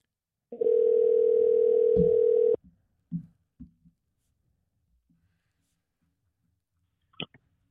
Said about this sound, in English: All right. Let's get this phone ringing.